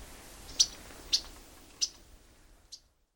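Yellow-rumped Warbler calls: four short, sharp, high chip notes spaced irregularly over a few seconds, the last one softer, against a quiet outdoor background with no voices.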